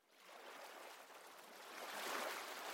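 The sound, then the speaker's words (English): Ocean waves wash in with a steady, hissing roar that swells louder toward the end, a continuous rush of water with no voices. “Welcome to Ocean Serenity, a guided meditation designed to immerse you in deep relaxation, accompanied by the soothing sounds of ocean waves.”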